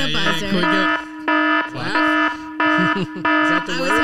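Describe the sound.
A harsh, loud game show buzzer blares in a string of repeated bursts, about five pulses in a row, with voices talking and laughing between and under the blasts.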